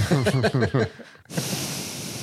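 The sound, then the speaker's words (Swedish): A few quick voiced syllables give way, after a brief pause, to a long, loud, hissing exhale as someone imitates heavy breathing on a phone call. “Jag kan verkligen tänka mig det där samtalet var också, att det var mest andning.”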